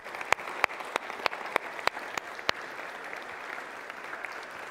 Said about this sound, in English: So could I ask the fathers to stand today? The dads in the audience, could you stand? Can we give a round of applause for the dads here?